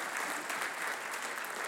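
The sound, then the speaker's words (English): An audience claps steadily, a dense wash of many hands applauding at an even, fairly loud level throughout, with no voices over it. “Yeah, that's worth another hand clap.”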